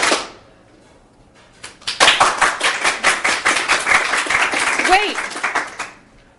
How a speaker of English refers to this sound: I don't want your applause.